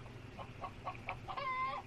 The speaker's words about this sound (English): I got all these goddamn chickens flying around in here, and they don't want to stay on the ground too long because I think they know what they're in for.